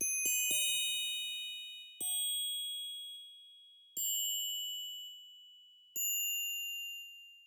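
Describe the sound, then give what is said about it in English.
Soft, bell-like synth tones ring out alone, accentuating the lead synth melody in a song's chorus: a quick cluster of three strikes, then single chimes about every two seconds, each with a bright, shimmering tail that slowly fades. “Next, we hear a subtle bell-like synth accentuating this lead melody.”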